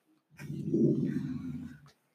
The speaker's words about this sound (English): One of the puppies got startled and started growling